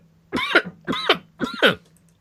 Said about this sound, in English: I'm going to cough, so give me just a moment.